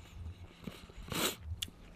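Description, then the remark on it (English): A person chews close to the microphone with their mouth closed, making soft, wet mouth sounds and a couple of sharper crunchy bursts, irregular and fairly quiet, with no talking. “If you're going to chew like that, can you back away from the microphone a little bit?”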